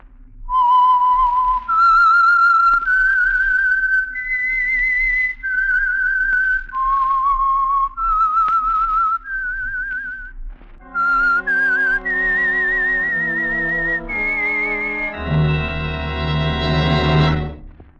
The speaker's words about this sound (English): And for Sunday evening listening pleasure, the signal to listen for is this whistle that identifies the Signal Oil program, The Whistler.